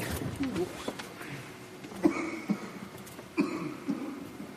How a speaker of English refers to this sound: If he's still coughing in a few minutes, I'm going to go check on him.